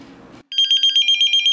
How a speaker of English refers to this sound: So we both sit down in my car, and then suddenly my pager goes off.